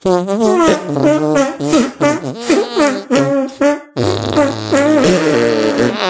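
A loud run of buzzy, squelching musical arm farts made with a hand and armpit, sliding in pitch like a tune, pausing briefly before a denser, messier burst.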